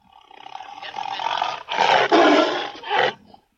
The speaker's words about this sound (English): Tiger.